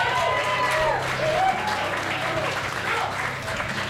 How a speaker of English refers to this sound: Thank you all for being here. Give yourself a quick round of applause.